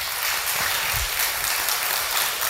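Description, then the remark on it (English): Steady audience applause fills the whole stretch, a dense wash of many hands clapping at once, loud and even throughout with no voices rising above it. “See, that was really so I'd get some applause.”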